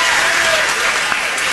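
The studio audience of Jimmy Fallon's show applauds steadily after his joke about Adidas ending a partnership, a dense wash of clapping at an even, fairly loud level, with a few cheers and whoops rising through it.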